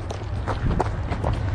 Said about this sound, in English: We are now running to try to catch the train.